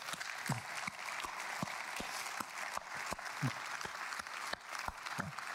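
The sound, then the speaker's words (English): An audience claps steadily in a sustained round of applause, dense overlapping hand claps with sharper individual claps standing out, and a few faint voices underneath. “And as a church, can we just collectively say, we see you and we love you just by a show of applause, round of applause.”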